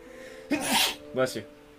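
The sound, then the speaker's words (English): A loud sneeze bursts out sharply, followed moments later by a shorter voiced sound, against a faint steady hum in the background. “Bless you.”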